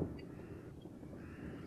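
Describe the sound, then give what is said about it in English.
A raven caws in hoarse, rasping croaks that blur together over a brief stretch, fairly faint, with no voices present. “It's my emotional support, Raven.”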